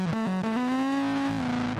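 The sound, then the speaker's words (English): A distorted electric bass plays a short run of thick, buzzing sustained notes that slide between pitches, loud with no voices over it. “trying to fucking rock out on his bass at fucking 1,000 years old with his distorted bass”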